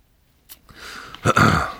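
Someone takes a sip of water: a short click after silence, a few soft mouth and slurping noises, then a louder swallow and breath toward the end. No talking.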